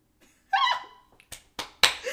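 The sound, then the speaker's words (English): Three sharp hand claps ring out in quick succession, loud and crisp, right after a short high vocal exclamation. “Ooh, I had to clap on that one.”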